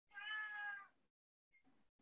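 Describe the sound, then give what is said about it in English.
A single drawn-out cat meow, fairly loud, lasting about a second, followed by a brief quieter chirp-like sound. “That's good thing kitty.”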